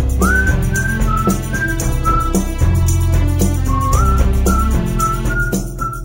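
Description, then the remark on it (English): A whistled melody, doubled in two layered tracks, glides through a short phrase of held notes over a steady, full band backing with bass and rhythmic accompaniment. “this whistling part that kind of sort of the same melody line, but a little different, also double tracked.”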